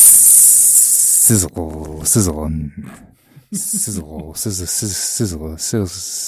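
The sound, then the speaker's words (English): A voice imitates the sizzling hiss of a hand burnt on a desk lamp light bulb, a loud, breathy rush held for over a second, followed by talking with a few more short sibilant bursts between words. “Sizzle.”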